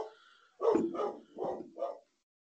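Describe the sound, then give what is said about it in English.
A dog barks four times in quick succession, the barks running close together and fairly loud, with a faint murmur of background noise before the first bark. “Tell your dog I said, what's up?”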